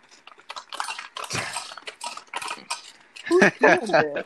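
An ice machine drops ice: a rapid, irregular run of hard, bright clinks and rattles of cubes tumbling, growing louder toward the end, where a voice briefly sounds over the clatter.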